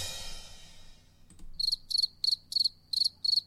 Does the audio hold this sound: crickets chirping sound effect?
yes